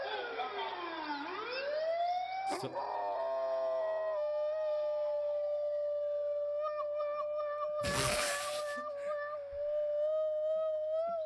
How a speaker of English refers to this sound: Is that the dog? No, no, no. Oh. So this is the siren.